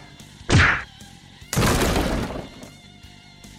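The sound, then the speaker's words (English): A sharp, loud wooden whack is followed a second later by a heavier smash with a splintering, clattering tail as a pool cue is slammed against a wall. No one speaks. “The pool cue smashing against the wall snaps James out of his anger.”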